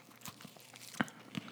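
Crisp crunches of someone biting into a Butterfinger candy bar, three or so sharp crackling bites spaced out over a quiet background, with no talking.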